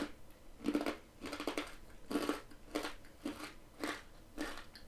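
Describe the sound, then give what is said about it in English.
Loud, crisp crunching on hard sweet potato chips, about seven bites in a steady chewing rhythm, each a sharp brittle burst with brief pauses between and no talking. “Yeah, it's definitely one you have to like crunch on.”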